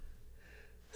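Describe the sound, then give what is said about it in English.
A quiet build-up with a faint breathy intake, then a sudden loud sneeze bursts out at the very end, cut off abruptly. “I'm going to sneeze.”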